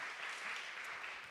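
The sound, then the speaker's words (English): A round of applause from many hands for the band and singers, a dense, steady patter of clapping that holds at an even, fairly soft level throughout with no voices over it. “The band and the singers, let's just give them a round of applause, weren't they?”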